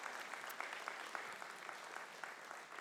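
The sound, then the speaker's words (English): A crowd at a morning service applauds a guest speaker invited to the stage, many hands clapping together in a dense, continuous patter that stays even in loudness for the whole stretch, with no voices breaking through. “Can we just give her a huge round of applause for being willing to come and to share with us here this morning?”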